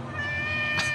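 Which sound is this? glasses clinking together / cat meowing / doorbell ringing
cat meowing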